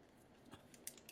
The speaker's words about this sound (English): I can hear Gabe click clacking away over there on that keyboard.